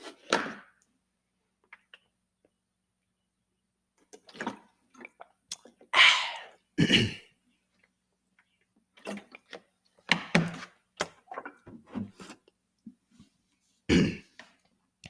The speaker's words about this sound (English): I'm about to sip my water real quick.